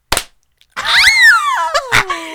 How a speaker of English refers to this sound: Wait, we should sync clap. Ready?